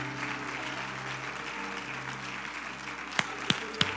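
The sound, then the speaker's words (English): A church audience claps hands to praise the Lord in a steady, dense wash of applause over a low sustained hum, with a few sharper, louder claps standing out near the end. “Would you clap your hands today and give the Lord praise?”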